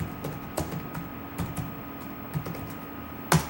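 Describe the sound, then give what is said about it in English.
Irregular clicking of keys on a computer keyboard as someone searches Google, a handful of quick keystrokes at a casual pace, fairly soft, ending with one sharper, louder tap. No one speaks. “I'm typing on your keyboard all evening, and I haven't made a typo yet,”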